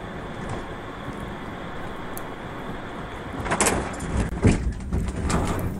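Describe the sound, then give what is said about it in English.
Steady road and engine rumble gives way to a burst of loud thumps and scraping as a car strikes a deer, followed by continued vehicle noise. “So that is the deer getting hit by the car.”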